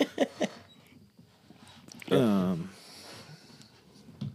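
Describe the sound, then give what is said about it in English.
A dog gives one short, wavering whimper midway through, fairly clear, after a few brief voice-like sounds at the start, with a low background rustle throughout. “Having a dog like that's your best alert to be able to get your pistol loaded.”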